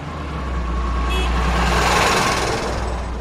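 A heavy truck rumbles with a deep, steady engine drone and gritty roadwork noise as crews fix and repave a road beat up with potholes, while a brief, faint reversing beep chirps once early on. No one speaks.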